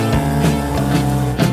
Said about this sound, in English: After a year of marriage, she left her husband. She rode away on a motorcycle toward her new life, a Super 8 camera in hand.